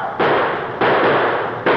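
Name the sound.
gunshots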